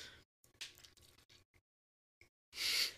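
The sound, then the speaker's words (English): Someone sips water: a run of short, wet mouth and swallowing noises, a brief pause, then one louder, hissy slurp at the end. No one speaks. “Sorry, I took a sip of my weekly water.”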